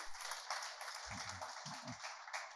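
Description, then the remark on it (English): An audience claps, a steady, dense patter of many hands that keeps an even level throughout, with a few low murmurs of voices underneath. “Let's clap for him too.”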